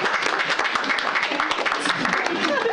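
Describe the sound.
An audience in San Francisco bursts into steady applause to show they like trap music, a dense wash of many hands clapping at once that holds throughout, with scattered voices and a brief cheer mixed in.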